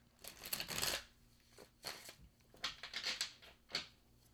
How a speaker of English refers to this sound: So one last shuffle as I ask my question of my cards.